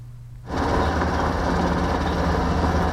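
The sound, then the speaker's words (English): After a quiet half-second, a loud, steady mechanical roar of military helicopters (a Black Hawk, an Apache and a Chinook) flying overhead near the presidential office on Thursday morning, training for the National Day flypast, sets in with a deep low rumble and broad whooshing noise that holds constant. No voices. “The sound of helicopters fills the air.”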